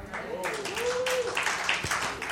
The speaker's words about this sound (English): Okay, y'all clap, but I tell you this for a reason.